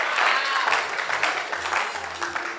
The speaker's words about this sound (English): Oh, clap your hands together for Jesus. Wow.